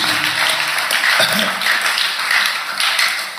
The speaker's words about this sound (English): Clap for God for adopting us. Clap for God for adopting you.